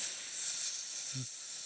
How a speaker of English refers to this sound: You ready? You can hear it sizzling in the air fryer.